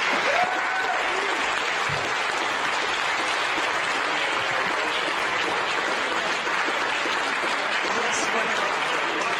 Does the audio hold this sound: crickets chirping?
no